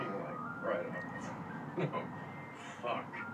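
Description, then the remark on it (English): A tinny ice cream truck jingle plays steadily at moderate volume, with muffled voices breaking in over it a few times. “Or it just could be the ice cream truck that's distracting him.”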